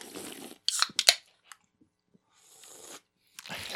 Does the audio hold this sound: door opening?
no